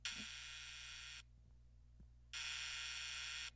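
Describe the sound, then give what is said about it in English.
A harsh, loud Family Feud game show buzzer blares twice: one long blast of about a second, a short pause, then a second long blast. The buzzer sounds alone over a faint low hum. “That is the Family Feud buzzer.”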